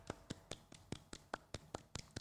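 A light golf clap: about eleven soft, crisp hand claps at a steady, unhurried pace over two seconds, with no voices.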